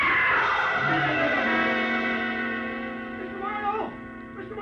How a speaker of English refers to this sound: Somebody screamed!